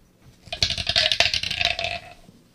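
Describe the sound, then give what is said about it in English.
Small hard dice clatter and rattle together for about a second and a half, a dense burst of quick clicking impacts, then settling into quiet. “I can't believe those dice don't fit in it.”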